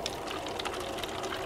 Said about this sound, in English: can you pour me a cup of water?